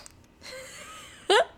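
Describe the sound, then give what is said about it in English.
Someone imitates a fart with their mouth: a soft breathy hiss, then one short, loud, buzzing raspberry burst, with no words spoken. “When I farted during sex, it was during sex. And like I came so hard that I just like...”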